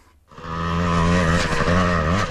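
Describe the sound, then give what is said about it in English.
Several dirt bike engines rev loudly along East Tamaki Road in Ōtara, a sustained high-pitched whine that rises and falls in pitch with the throttle and fills the whole recording without any talking. “noise from the swarms of dirt bikes hooning along East Tamaki Road reverberates around their concrete-walled shop”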